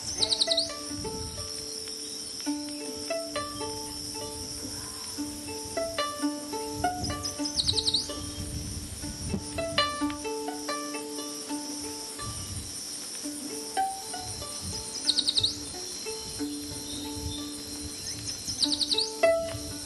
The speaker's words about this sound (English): We have scarcely started down the trail when we hear from the shrubbery a high-pitched, sweet, sweet, sweet, I'm so sweet, with a rising inflection at the end. It is the yellow warbler, perhaps the commonest warbler from Florida to Alaska.